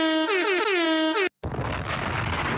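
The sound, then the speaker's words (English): A loud, blaring air horn sounds with a wobbling pitch for about a second, then cuts off sharply; after a brief silence, a harsh, noisy bomb explosion burst fills the rest. “Had to stop that air horn for a bomb.”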